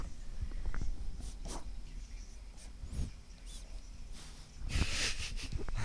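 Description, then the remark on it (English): A dog breathes and snorts into the microphone, with several sharp snuffly bursts and a heavier huff near the end amid low background noise. “Just go breathing on. From the dog.”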